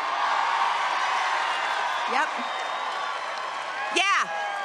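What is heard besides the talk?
crowd cheering and applauding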